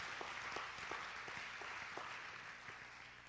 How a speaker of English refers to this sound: Can we give God a hand clap of praise this morning? Amen.